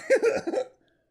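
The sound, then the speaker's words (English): A quick run of three sputtering fart sound effects, fairly loud, blurring together over about half a second before cutting to silence, with no one talking. “give me some farts.”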